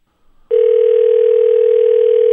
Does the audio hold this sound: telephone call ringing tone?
yes